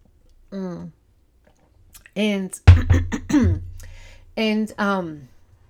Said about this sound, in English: And hold on a second, let me have a sip of my juice.